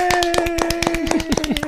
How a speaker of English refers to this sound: Clapping? I will not clap.